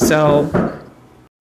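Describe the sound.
A single sharp knock on a door, from someone coming to the door, lands midway, fairly loud, following a brief voiced hum and then fading into quiet.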